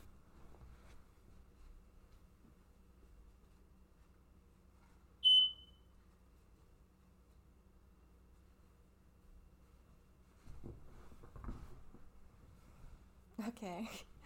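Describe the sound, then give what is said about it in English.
A single short, high-pitched beep from a fire alarm going off, sharp and fairly loud against a quiet background, with faint murmuring and rustling toward the end. “okay, so this is awkward, but my fire alarm is going off, so just give me 1 second.”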